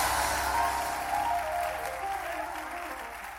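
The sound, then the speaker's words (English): An audience at a sermon claps and cheers loudly in a steady, dense wash of applause with shouts mixed in, sustained for a few seconds before easing slightly. “Come and clap your hands and scream like I'm preaching.”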